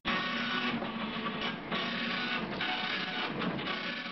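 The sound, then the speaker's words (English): A telex machine clatters away continuously, a dense, loud mechanical chatter of rapid printing strikes with a busy rhythmic texture and brief dips, with no voices over it. “It's a telex machine. It's pretty noisy, certainly.”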